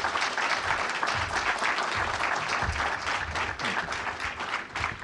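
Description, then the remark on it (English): Sustained audience applause at the Atlantic Council for three distinguished speakers, including Senator Cardin, a dense wash of many hands clapping at steady loudness for about five seconds, with no break and no voices standing out. “So without further ado, please join me in a very vigorous applause for these very three distinguished speakers.”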